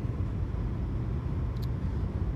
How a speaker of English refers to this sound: and I am on my way to work. This is a different place in the drive. I'm actually driving into the place right now.